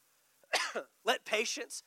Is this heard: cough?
yes